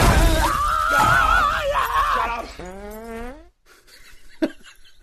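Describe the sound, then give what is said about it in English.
A cartoonish fart sound effect: a buzzy, rising blast lasting about a second, preceded by wavering squeaky tones and followed by near-quiet with one sharp crack near the end. “Can I have that sound effect, the fart sound effect at the end there?”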